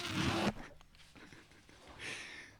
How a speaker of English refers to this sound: I've closed the bag, but now paper will be ripped. The soothing sound of paper ripping.